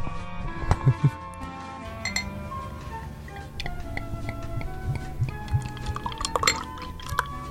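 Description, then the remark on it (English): Beer pours into a glass, a steady liquid splash and fizz broken by a few sharp clinks of glass, with no one talking. “Now I'm going to pour it.”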